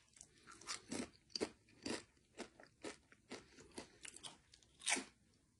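crunching potato chips

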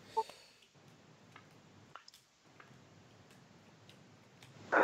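shuffling playing cards

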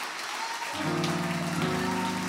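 audience clapping hands

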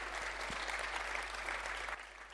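audience round of applause

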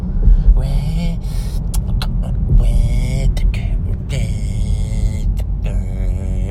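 car interior rumble

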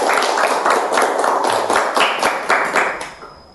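children clapping hands

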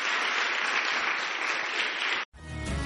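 audience hand clapping

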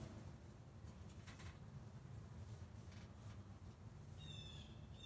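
bird calling outside

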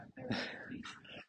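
dog whimpering and yipping

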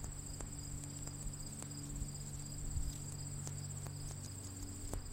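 cricket chirping

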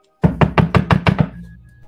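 knocking on a door

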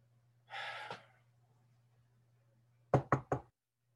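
knocking on a door

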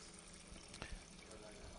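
water running

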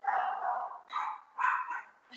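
dogs barking

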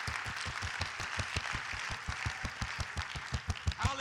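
audience clapping hands

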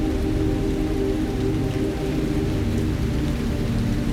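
rain falling

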